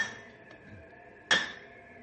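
A hammer strikes a metal stake being driven into ice as hard as concrete: one loud, sharp clank with a bright metallic ring that lingers, preceded by a fainter tap. No voices.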